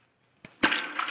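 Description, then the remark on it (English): A stone thrown down a mine shaft drops into water: a short knock, then a loud, hissing splash that churns on for about half a second. No one speaks. “Well, you better throw a stone down in there to make sure there's water.”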